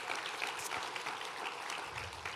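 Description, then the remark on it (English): A church audience claps steadily together, a dense, continuous wash of many hands at a fairly even level, with no voices standing out. “And so come on, let's give the Lord another big round of applause for that.”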